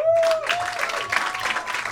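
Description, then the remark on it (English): An audience at the comedy show Stand Up on the Spot breaks into a round of applause, dense steady clapping that holds loud for two seconds, with a brief whoop-like tone riding over the start. “And by round of applause, who has never seen this show before?”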